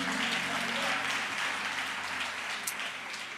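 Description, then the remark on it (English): A church audience claps together at the preacher's call before a sermon, in sustained, steady applause, a dense wash of many hands that stays loud throughout and eases off slightly at the end, with a few voices faintly mixed in. “Clap your hands if you're ready for God's word.”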